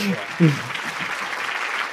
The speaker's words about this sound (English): Please clap. Oh, please clap. Please clap.